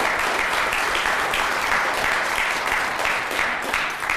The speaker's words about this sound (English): There you go. We're good. A round of applause.